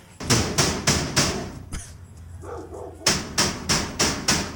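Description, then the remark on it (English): A door bangs loudly over and over in a fast, steady rhythm, then falls silent for about a second before another run of heavy slams starts up. “Loudest door in history.”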